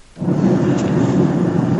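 A loud, deep rumble of thunder bursts in abruptly and keeps rolling steadily, a dense low roar with a rough, crackling texture and no voices over it.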